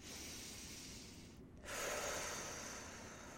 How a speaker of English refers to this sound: Oh, let's all do some deep meditative breathing.